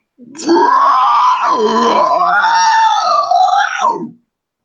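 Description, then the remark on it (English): A person's voice imitates Godzilla's roar: one long, loud, sustained vocal screech of about four seconds, harsh and wavering in pitch, rising and falling before cutting off. “Wow, was that your Godzilla? I tried.”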